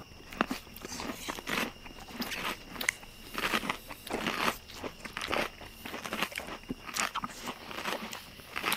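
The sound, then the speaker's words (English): Loud, crackly crunches as someone bites into a hot, hard, crusty sandwich roll, repeated bites and chewing in an irregular rhythm with no talking. “I think all that's left is for all of us to bite into these delicious sandwiches.”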